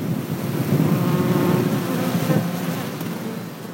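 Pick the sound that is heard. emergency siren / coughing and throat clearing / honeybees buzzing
honeybees buzzing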